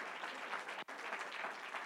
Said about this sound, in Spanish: Dele un aplauso al Señor, hermano. ¡Aleluya!